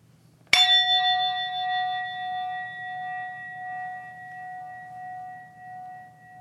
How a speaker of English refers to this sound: Listening for the fading sound of that bell to invite you to let your eyes close.